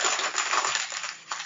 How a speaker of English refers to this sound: Let me pause for a moment while I crumple this piece of paper.